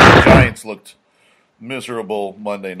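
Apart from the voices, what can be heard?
sneeze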